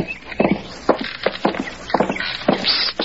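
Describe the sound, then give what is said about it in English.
Footsteps of a young couple walking on the spacious wooden porch of a resort hotel near a large eastern city, a steady run of hollow, knocking thuds with some steps overlapping, moderately loud with no voices. “A young couple walks by them.”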